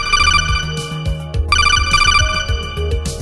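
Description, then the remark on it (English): A loud electronic phone ringtone plays two bright, warbling ring bursts in a row, each a cluster of high, buzzy tones over a low synth bed, with no voices, as a listener call comes in on the phones. “You want to go to the phones? Maybe we'll take like a listener call.”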